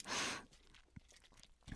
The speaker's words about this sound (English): And I'm even wearing, listen, you can hear my jewelry. Listen to all the jewelry. This is definitely not my keys. This is jewelry.